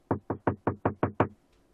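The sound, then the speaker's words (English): Seven firm, evenly spaced knocks on a wooden door, fairly loud, in a quick steady rhythm with nothing else audible. “I'll get it. All right. I'm up. Mm-hmm. All right. And so I crack open the door and say, "Can I help you?"”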